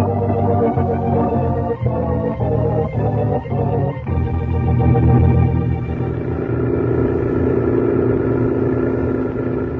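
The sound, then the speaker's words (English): A truck engine rumbles steadily as the truck drives across the desert, loud and continuous, with a few rhythmic knocks early on before it settles into a sustained, droning drive. “He's tilted up the headlights on the truck.”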